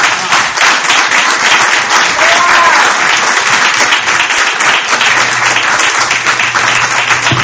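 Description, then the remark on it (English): Sustained applause from a church crowd, a dense, steady patter of many hands clapping at an even loudness for several seconds, with a low hum entering toward the end. “Is that an applause?”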